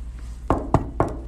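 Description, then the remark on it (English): Three firm knocks on a wooden door in quick, even succession, made by three trick-or-treating children on Halloween, clear against a quiet background. “Then suddenly, there's a knock.”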